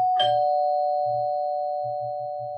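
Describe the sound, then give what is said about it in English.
A house doorbell, rung by a woman with a small child standing on the doorstep, chimes once with a sharp strike, then its tone rings on steadily and evenly for a couple of seconds, with a faint low rumble underneath and no voices. “After a light breakfast of eggs and fruit and cleaning everything up, they sat down to a brief morning family worship when the doorbell rang.”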